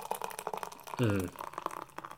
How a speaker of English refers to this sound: It's their Flintstone? No, it's Flintlock Stout. Nice. Go ahead. God damn, that's huge. I'm going to do the pour. It's just a crowler. It's huge.